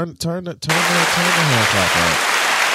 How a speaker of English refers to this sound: A clap of, just a hand clap. Let's turn it up.